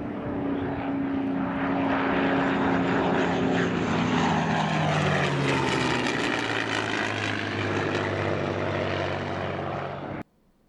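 A loud, steady drone of propeller aircraft engines, rough and throbbing, with a pitch that slowly sags lower over about ten seconds before cutting off abruptly. No voices. It is the bomber Ye Olde Pub, damaged by anti-aircraft fire, losing acceleration and falling behind its formation.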